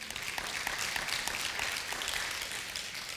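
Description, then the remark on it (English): A large group applauds the Lord steadily, a dense wash of many hands clapping at once with no pauses, sustained and moderately loud throughout. “Because God, yeah, you can give the Lord a great round of applause.”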